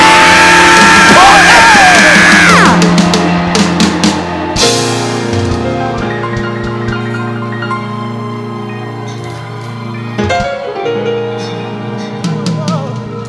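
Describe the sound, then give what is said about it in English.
A large audience erupts in loud, sustained screaming and shouting, a dense roar of many voices with yells rising above it, continuing throughout at high volume with music droning underneath. “Come on, scream.”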